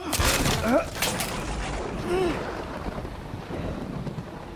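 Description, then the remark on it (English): A stormy sea: steady roaring wind and rushing waves fill the whole stretch, loudest at the start, with a few brief, wavering, voice-like tones rising over the noise. “A storm out at sea.”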